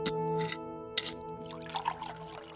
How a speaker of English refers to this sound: I poured myself some Hen and got comfortable.